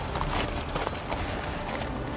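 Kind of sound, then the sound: animal, horses galloping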